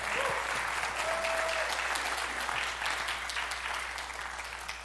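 A church audience gives a clap offering, a dense, even wash of many hands clapping that holds strong throughout and eases slightly toward the end, with a brief faint tone sounding early on.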